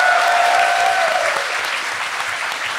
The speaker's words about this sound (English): Hey, everybody, round of applause for the tech guy that we've made run around.